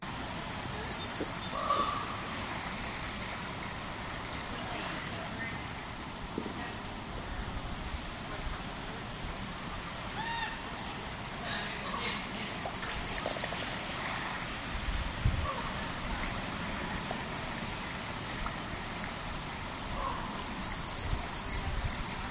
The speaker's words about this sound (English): So that was the first variation of Townsend's Warbler song, and here is the second.